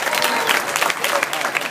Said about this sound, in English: And either way, we honor everybody here at Lock Haven University for your community service and the hard work you do for the Make-A-Wish Foundation. Let's give yourselves a round of applause.